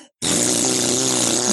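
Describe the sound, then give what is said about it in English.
A voice blurts out a loud, buzzy imitation of a fart, starting abruptly after a brief pause and sputtering steadily for over a second, unbroken. “Anyway, that caused a ginormous fart to shoot out.”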